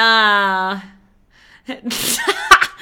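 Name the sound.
coughing fit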